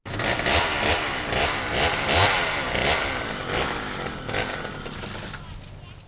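A chainsaw engine roars loudly and steadily for about six seconds, its pitch surging in a few quick revs before settling into a rough, buzzing idle.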